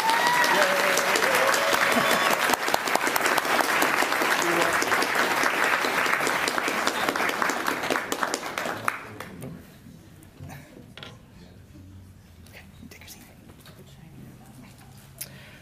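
A crowd applauds loudly with dense, steady clapping for about nine seconds, then the clapping thins out and fades, leaving a quiet room with scattered faint sounds.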